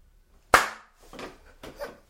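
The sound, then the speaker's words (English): A single sharp, loud hand clap rings out on its own, followed by two softer, duller bursts spaced at a slow, deliberate pace. No one speaks. “Sounds like a really slow hand clap.”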